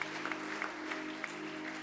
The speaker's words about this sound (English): Thank you to our worship team and our singers and musicians for doing such a wonderful job week in and week out. Amen. We are blessed. Amen. Go ahead and give them a great hand clap of appreciation.